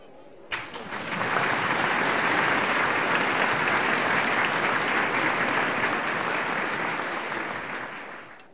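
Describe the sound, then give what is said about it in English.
A standing ovation in a ballroom styled after the Crimson Room of Manhattan's Chandler Hotel: a large crowd's thunderous applause starts abruptly, quickly swells to a dense, steady roar of clapping for several seconds, then eases slightly at the end, with no voices. “where beloved magician and 1931's Banquet for Two co-star Professor Wickwire drowned in front of an unknowing crowd during a standing ovation.”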